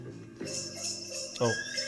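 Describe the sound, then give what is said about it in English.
A brief horse whinny with a quick descending, wavering cry rises out of a playing song, heard clearly over the steady music backing. “Oh, the horse?”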